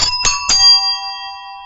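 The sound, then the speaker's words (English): Three quick, bright doorbell chime strikes in fast succession, then a long ringing tone that slowly fades. Loud, with no voices. “you have a third bell”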